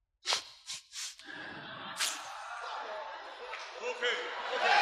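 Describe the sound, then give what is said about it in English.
Three sharp, forceful breaths blown out in quick succession by a preacher during a sermon, illustrating God breathing out the scriptures, followed by a steady swell of crowd noise and voices. “This is how I say, God did this. Breathe out.”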